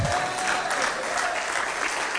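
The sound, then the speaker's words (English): An audience claps steadily at the preacher's request in a dense, sustained burst of applause, loud, with no voices standing out above it. “This is when we would put that applause light on. Go ahead and clap right there.”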